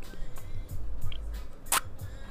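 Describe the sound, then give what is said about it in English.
Someone chews candy, with a handful of wet smacking bites in an uneven rhythm and one sharper crunch near the end, no talking. “Are you just eating a bunch of candy out of your drawer?”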